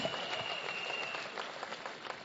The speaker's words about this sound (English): Clap for them.